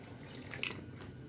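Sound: sipping coffee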